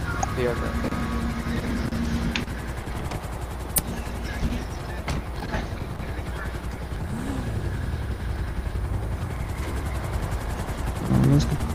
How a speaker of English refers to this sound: Don't park your helicopter here. Seriously, don't. I'm not parking it. I'm just hovering. There's a helipad on top of the police station. Yeah, I'm just hovering. I'm not parking this shit. I'm just hovering it.